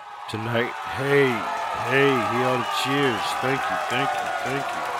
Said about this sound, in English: Hey, hear all the cheers. Thank you. Appreciate it.